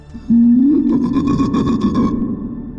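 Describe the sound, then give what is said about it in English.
A loud, deep sea-serpent cry, a sustained moaning tone that swells and rises slightly, then takes on a rhythmic, pulsing growl before fading, echoing from beneath dark waters at night as a long serpentine creature rises from the depths. No one speaks. “Oh, as this sound echoes from beneath the waters, and you see rising from the dark waters, as it's nighttime, right?”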